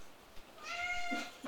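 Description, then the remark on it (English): A single drawn-out cat meow, clear, rising then fading over about a second amid otherwise quiet, in the kitchen lounge area of a house. “And the cats have run of your house.”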